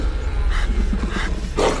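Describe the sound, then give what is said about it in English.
A wolf snarls and growls viciously and loudly as it leaps at and attacks a creature, clamping its jaws around the throat, in a quick string of rough, throaty bursts ending with a harsher roar-like snap; no voices. “From nowhere, the wolf that led us here leaps at the demon, clamping its jaws around the throat.”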